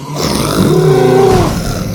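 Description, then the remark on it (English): A baby dinosaur, Buck, lets out a loud, threatening roar at a raptor, a single rising-and-falling growl that swells in the middle and tapers off over about a second, unaccompanied by speech. “He let out a threatening roar.”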